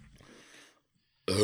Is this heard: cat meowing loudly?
no